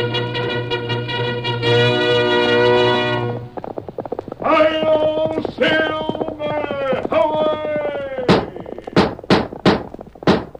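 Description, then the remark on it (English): Hoofbeats of a galloping horse, the Lone Ranger's horse Silver, pound out near the end in a quick, regular series of sharp thuds, following a stretch of sustained, tonal music-like sound. “A fiery horse with the speed of light, a cloud of dust, and a hearty high old Silver, the Lone Ranger.”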